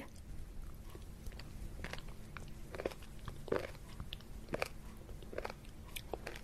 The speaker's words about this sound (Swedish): Det som knaprar är alltså müslin.